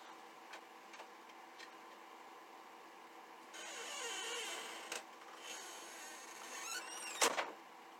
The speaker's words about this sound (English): Because all of a sudden my printer paper is regular standard size that I have. And it's saying that it's not.